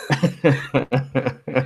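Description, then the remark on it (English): A loud fit of coughing: about seven quick, rough, voiced bursts in a steady run, each with a short gap between, and no talking. “Hopefully I'll get through this podcast without coughing.”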